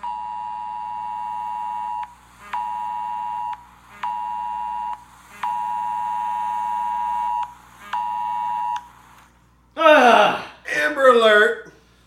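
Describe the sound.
A phone emergency alert tone for an Amber Alert blares in a series of loud, harsh steady blasts of uneven length with brief gaps, followed by a couple of seconds of a voice reacting.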